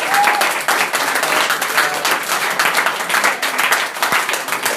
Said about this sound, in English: Let's give one more round of applause to all of our readers.